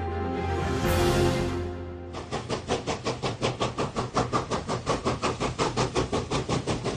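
A steam train pulls up to a station platform in Beijing in 1969, with a line of children waiting to board: a loud hiss of venting steam, then a steady, rapid rhythmic chuffing of the locomotive that carries on to the end, with no voices.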